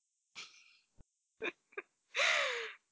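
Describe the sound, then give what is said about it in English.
A stifled sneeze: a few sharp breathy catches and small clicks build up before one muffled, squeezed burst with a brief falling squeak, heard alone with no talking. “Trying not to sneeze.”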